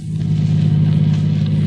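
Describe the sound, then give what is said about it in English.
A car engine hums steadily as the vehicle drives along a road in the country in the cool of the early morning, a continuous low rumble with a strong droning tone and no voices. “You know, Chuck, it was only about 3 months ago that we were driving along this very road.”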